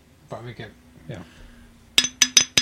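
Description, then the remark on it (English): Brief speech, then four quick, bright clinks as something glassy or metallic is tapped to ding it as a toast, ringing sharply in a fast uneven rhythm. “I'm trying to find something to ding.”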